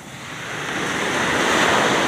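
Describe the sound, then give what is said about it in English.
Ocean surf washes in toward shore, a broad hissing rush that swells steadily louder over two seconds, with a faint wind noise and no voices. “Let me avoid the water. I don't want wet shoes today.”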